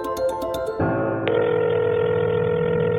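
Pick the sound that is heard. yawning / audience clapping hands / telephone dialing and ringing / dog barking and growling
telephone dialing and ringing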